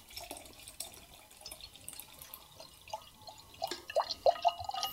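Beer of 6.5% alcohol pours from a 660 wax-sealed bottle into a glass: a steady fizzing trickle that grows louder, ending in a few distinct glugs as the bottle tips further. No voices.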